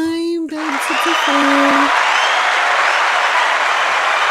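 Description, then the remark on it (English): A short voiced tone gives way to a loud burst of crowd applause and cheering, with a few high whoops early on, then steady, dense clapping holding for about four seconds. “the crowd approves.”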